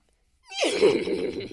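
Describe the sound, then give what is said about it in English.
A person's voice imitates a horse whinny, a single loud, nasal, quavering call that rises and wavers for about a second, with no other talk. “I could make like the horse sound.”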